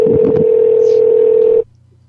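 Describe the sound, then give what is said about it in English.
A single steady, loud telephone tone holds for about a second and a half and then cuts off abruptly, leaving near silence; it fits a ringback heard after dialing. “It's ringing, it claims.”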